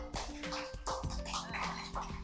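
A few sparse, polite hand claps, a golf clap given after a correct answer in a quiz, sound at an unhurried, uneven pace, each a short soft slap over a steady low background hum, with no one speaking.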